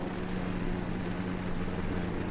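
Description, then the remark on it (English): A small lawn mower engine runs at a steady pace, giving a continuous low, buzzing drone with a constant hum and no change in speed or volume. “Five hours 47 of lawn mowing noises.”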